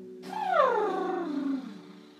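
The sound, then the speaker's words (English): A voiced lip trill during a yoga class, done in downward facing dog pose after a deep breath in: breath blown out through loose, fluttering lips with a hum that slides downward in pitch, fairly loud, lasting about a second and a half, with no talking. “Deep breath in here, and let's blubber out the lips.”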